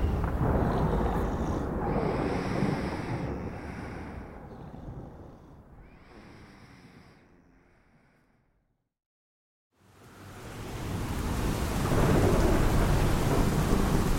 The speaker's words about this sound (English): My power kept the rain and wind at bay, while I thrilled at the sights. Seeing the storm from its own vantage, oh, it was amazing.